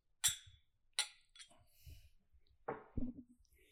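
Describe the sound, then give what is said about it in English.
A few sharp, bright clinks of glasses touching as men toast with cheers, two or three quick taps, followed by soft handling noises and a low murmur. “So let's try it, guys. Yeah, that's a little bit. Cheers, gentlemen. Cheers.”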